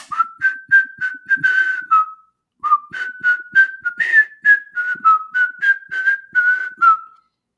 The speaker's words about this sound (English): I just want to give you, can I whistle at you and you tell me what the song is?